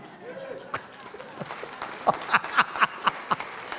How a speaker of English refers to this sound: I think you should give me a clap offering for getting done so quick.